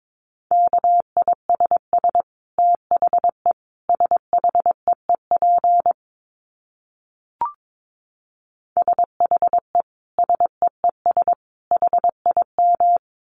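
Rapid Morse code beeps at 22 words per minute in a single steady pitch, keyed in quick bursts of short dits with brief pauses between groups, clear with no voices, plus one faint click during a longer gap.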